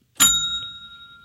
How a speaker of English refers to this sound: Hit that bell.